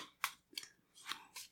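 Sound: shuffling playing cards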